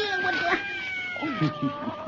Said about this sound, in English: that cat scared me. I guess you scared him, too. Look at him run.